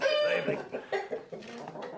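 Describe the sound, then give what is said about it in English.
Chickens cluck in a run of short, choppy bursts at an uneven rhythm, fairly loud, with no one talking over them; among them a big black male bird with his hens. “There's no problem with the cuckoos.”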